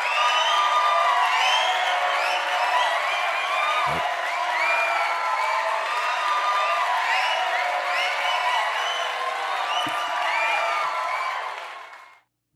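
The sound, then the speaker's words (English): A crowd cheers and whoops steadily for about twelve seconds, many voices overlapping in a dense, loud roar with applause mixed in, before quickly fading out at the end. “But gotta give a round of applause for that.”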